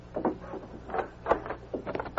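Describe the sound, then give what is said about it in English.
A door is unlocked and opened: a short series of clicks and rattling clunks from the lock and handle, moderately quiet, with no voices. “I'll unlock the door.”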